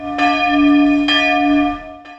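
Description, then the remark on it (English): Large church bells ring out with three distinct strikes, each followed by a long, humming resonance that overlaps the next, sounding loud with no voices present. The bells toll in Martel, Germany, Pope Benedict's place of birth, following the news of his death. “Church bells tolled in Martel, Germany, Pope Benedict's place of birth following the news of his death.”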